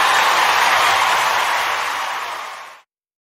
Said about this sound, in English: Might have made the clapping a little loud, but, you know, I wanted to make it sound like you're trying to yell into the crowd.